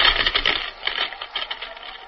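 A dense, sputtering electric crackle hisses steadily with irregular bursts and a faint whine, loudest at the start and then easing slightly, a sci-fi sound effect of the Atom Man's deadly atomic power starting up.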